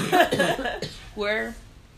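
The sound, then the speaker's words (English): A few short, rough coughs from a person with a cold and a stuffy nose, followed by a brief voiced, throaty sound as the coughing trails off. “You're like coughing.”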